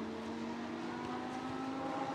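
A Lamborghini Super Trofeo race car engine drones loudly and continuously on track during race 2 at Watkins Glen in 2023, its pitch slowly climbing as it accelerates, with steady road and wind noise underneath and no talking.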